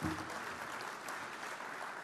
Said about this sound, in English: Everyone give him a round of applause. That was pretty good.